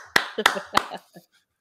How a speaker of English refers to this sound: ladies and gentlemen, applause, insert applause here.